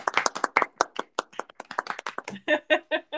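A short burst of applause for a recent move into a bigger studio: a few people clapping in quick, uneven sharp slaps, with some voiced whoops or cheers joining in toward the end.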